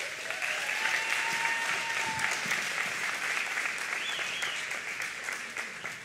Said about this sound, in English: Now, right now, I want to invite a very special guest to come on stage. Would you all give a warm round of applause